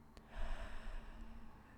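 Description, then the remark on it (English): A deep breath drawn in during a guided breathing exercise, with a soft rushing, airy sound that swells quickly and then lingers steadily, with no talking. “Taking a deep breath in. Notice how it feels to breathe.”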